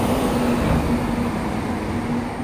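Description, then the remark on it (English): A garbage truck collecting trash outside rumbles steadily, a low droning hum with a faint tonal whine, loud and continuous with no talking. “hold on, that's the trash.”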